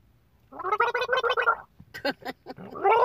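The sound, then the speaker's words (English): Wet, bubbling gargling of water in a throat, done to soothe the throat: a steady rattling burst for about a second, then a few shorter sputtering gurgles and another gargle starting at the end. “I'm gargling water. I'm trying to fucking soothe my fucking throat.”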